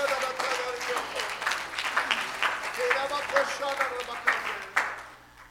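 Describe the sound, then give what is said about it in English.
An audience at a church service claps their hands steadily unto the Lord, a dense wash of many hands mixed with some vocal tones and voices, sustained for several seconds at moderate loudness. “Oh, I wish you'd clap your hands unto the Lord.”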